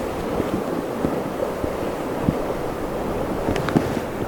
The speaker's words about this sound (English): I'm quite happy just sitting here listening to the sound of the ocean.